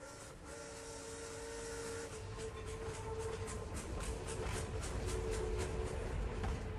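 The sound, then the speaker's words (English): A steam train chugs steadily with rhythmic puffing bursts, while a sustained whistle tone sounds early on and fades. The rumble builds slightly louder as it continues, with no voices. “Trains were emerging as a viable way to transport anything, really.”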